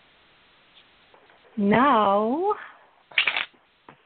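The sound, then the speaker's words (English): A brief, crisp riffle of a deck of cards being shuffled during a card reading, following a single spoken word, with faint rustling before and after. “Tell me when you want to stop the shuffle.”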